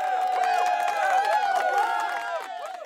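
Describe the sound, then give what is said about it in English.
A crowd cheers loudly and steadily, many high voices shouting and whooping together, with no clear words, easing off slightly near the end. “If you spotted any of those, then you deserve a massive cheer.”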